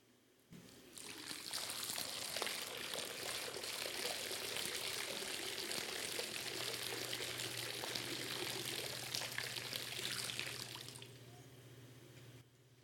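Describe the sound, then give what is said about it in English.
Water pours steadily into a baptismal font for a baptism for about ten seconds, a full splashing stream that starts abruptly and stops cleanly, with no talking. “My friends, we get to see and hear God's promises expressed to us in the waters of baptism.”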